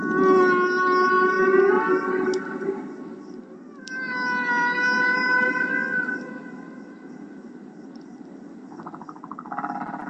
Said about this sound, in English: Roger Payne is the biologist behind ….